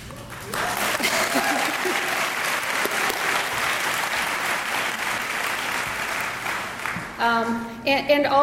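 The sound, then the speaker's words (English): A crowd at a Sally Ride Science event at UC San Diego applauds steadily and loudly for about seven seconds, a dense wash of clapping that fades out as a single voice starts speaking at the end. “You can clap. Please clap.”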